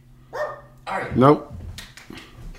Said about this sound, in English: She will bark at some point and I will lose my temper and I'll hear that on mic too. There it is. Instantly.